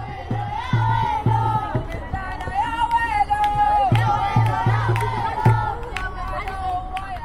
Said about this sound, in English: On the sidelines, family and friends sit on white plastic lawn chairs, cheering on the teams. One fan has her entire face painted blue, and she bangs a metal drum.